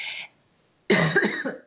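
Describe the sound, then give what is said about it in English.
A short, breathy burst at the start, a pause of silence, then a louder, rougher throat-clearing cough with a gravelly rasp that trails off, from a frog in the throat in the morning. No speech. “Excuse me, I've got a little frog in my throat, it seems like, this morning.”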